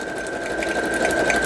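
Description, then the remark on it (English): A sewing machine runs steadily, its motor giving a constant whirring hum with a thin high whine and a fast, even rattle of stitching throughout, with no talking. “If it's easier to sew this way, just turn it around and carry on.”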